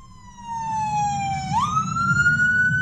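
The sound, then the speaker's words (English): An ambulance siren wails loudly, its tone sliding down and sweeping back up, over a steady rumble of street traffic, as the ambulance tries to get through Summer Smash Festival attendees crossing the street on a sunny Saturday afternoon in June. “On a sunny Saturday afternoon in June, waves of Summer Smash Festival attendees cross the street, ignoring an ambulance trying to get through.”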